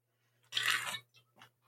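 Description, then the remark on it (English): Someone takes a drink of water: a loud, wet half-second slurp, then two quicker, softer swallow sounds over a faint steady hum, with no talking. “I'm gonna take a drink of water.”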